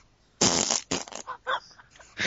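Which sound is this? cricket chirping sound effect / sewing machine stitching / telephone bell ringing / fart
fart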